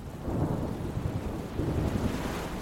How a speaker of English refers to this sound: The storm gets wilder, and the waves begin to toss me around, and I'm struggling to breathe.